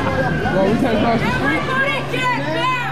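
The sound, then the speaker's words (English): A crowd jeering and heckling police officers, with many raised voices shouting over one another in a dense, continuous clamor, and a low steady hum running underneath. “you can hear the crowd jeering and heckling the cops.”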